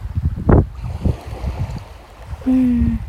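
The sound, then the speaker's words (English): Blustery seaside resort ambience with white and grey seagulls about: gusts of wind and washes of surf rise and fall, then a steady low horn-like tone sounds for about half a second near the end. “Typical seaside resort scene. The seagull.”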